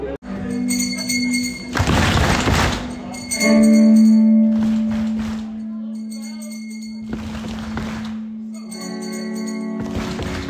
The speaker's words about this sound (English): never had people clap along to bells before. This is new. Wow, it's out of time.